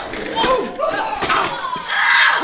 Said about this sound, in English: and as I shove this office chair at you, bro, bang!